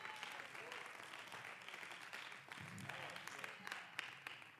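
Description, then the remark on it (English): An audience claps their hands to the Lord in a dense, steady wash of applause, with indistinct voices and shouts mixed in throughout. “I wish somebody clap your hands to the Lord.”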